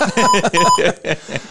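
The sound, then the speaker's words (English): An intercom alarm tone sounds as a quick series of loud electronic pulses, bright and slightly warbling in pitch, with a thin steady tone running beneath the first bursts before the pattern tapers off. “That could be an intercom alarm.”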